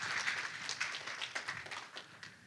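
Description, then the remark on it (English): An audience claps together for ending 2022 with almost $40,000 in the bank, in a brief burst of scattered, overlapping applause that holds steady for a couple of seconds before gradually thinning out. It is fairly soft, with no voices. “You can clap for that because that's a good thing.”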